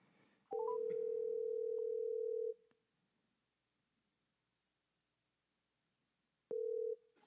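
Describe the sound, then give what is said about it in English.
An outgoing call ringing on the line: a steady, low electronic ringback tone plays for about two seconds, goes silent for several seconds, then starts a second ring that cuts off shortly. “See if he answered the phone.”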